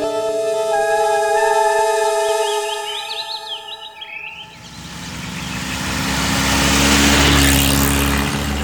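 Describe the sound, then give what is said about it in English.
A car engine drones with a steady hum, then rushing road and wind noise swells up as the vehicle cruises along an open road on a beautiful day, peaking loudly near the end. No one speaks. “Ah, that's more like it. The open road.”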